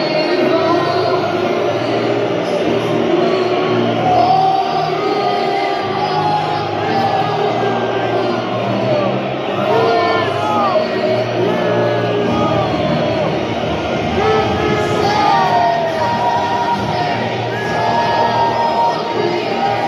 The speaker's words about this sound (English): At this weekend's FA Cup final, Liverpool fans caused controversy when they booed the national anthem.